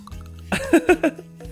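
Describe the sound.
A voice mimics liquid glugging out of a bottle, imitating the pouring of a Fall Highball drink: three or four quick gurgling pulses in a row, over a faint steady hum.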